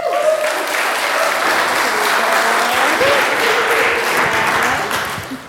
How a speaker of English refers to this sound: So as they're coming up here, give them a round of applause.